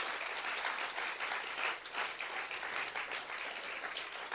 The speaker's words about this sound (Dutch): Geef God een applaus. Give God a hand.